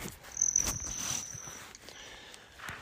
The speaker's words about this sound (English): A hummingbird is currently buzzing my head, either because I'm wearing a fluorescent orange hat, or because it's defending its flowers. I can never tell. They're very aggressive hummingbirds.